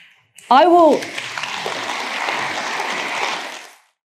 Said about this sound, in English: So weird. That's how you get a big round of applause at a Tory hustings.